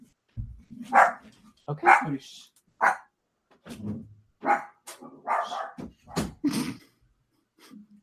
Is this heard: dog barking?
yes